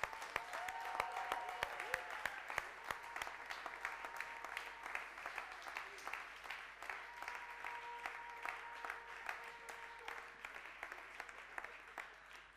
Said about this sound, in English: You're so valued. You're so honored in this place. Let's just applaud them, shall we?